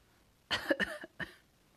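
A short burst of raspy coughing, two or three quick hacks in a row with a brief pause before the last one, standing alone against a quiet background.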